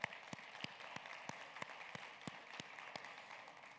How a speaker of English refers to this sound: So let's just give him a round of applause.